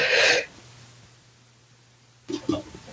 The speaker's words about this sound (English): Excuse me. Bless you. that's why we have a sneeze button.